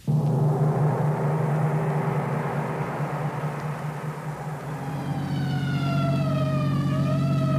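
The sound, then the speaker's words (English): A heavy engine rumbles steadily, and partway through an emergency vehicle siren starts wailing, its pitch sliding up and down over the loud drone. No one speaks. “So why the siren?”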